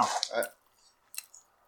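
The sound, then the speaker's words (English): Someone chewing a sandwich: a loud, wet burst of mouth noise at the start, then a pause and a couple of softer, brief smacking squishes. “Once you hear those chewing sounds... Delicious.”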